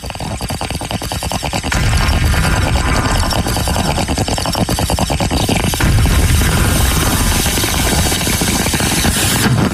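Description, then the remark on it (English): Loud, dense sound effects: a beat drop with rapid, rhythmic thumping, then a harsh, bubbling bong rip and a booming, roaring explosion that swells near the end. No one talks. “I'd love a drop the beat followed by a bong rip and an explosion.”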